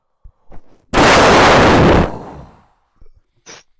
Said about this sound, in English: A crashing noise. An exploding noise, actually.